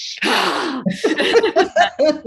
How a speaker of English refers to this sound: And if you see me in the car, I do Kundalini breathing. So I'm like this.